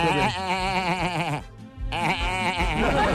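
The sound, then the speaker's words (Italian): A man's voice imitates a goat, giving two loud, quavering bleats with a warbling vibrato, separated by a short pause. “Partiamo da prima, la capra.”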